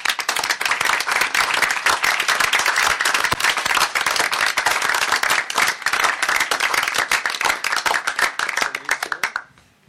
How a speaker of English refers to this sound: can you please come up and we could give you a round of applause.